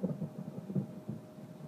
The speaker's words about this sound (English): Well, that was some lightning and thunder.